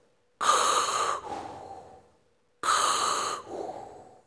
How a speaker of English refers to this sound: When the lights go out in the hallway and they turn to face the dark hallway behind them, black silence fills the air for a beat, and then a raspy breathing sound fills the air.